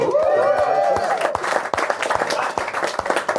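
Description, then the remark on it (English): An audience bursts into steady applause for a couple's 22 years of marriage, dense overlapping clapping mixed with a few cheers and a high whoop at the start, holding loud throughout. “All marriage year numbers get applause.”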